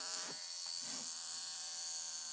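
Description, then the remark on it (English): A mechanical alarm wristwatch buzzes continuously, a steady, insect-like rasping drone with no pauses and no voices. “Can you hear that? Is it a cricket? Yes.”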